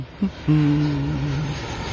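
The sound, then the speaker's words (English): An airplane roars past from right to left with a broad, steady rush of engine noise and a droning hum, flying from the UK to Saudi Arabia. It is fairly loud throughout, with no one speaking. “Plane is flying from right to left, whereas it should be flying from left to right.”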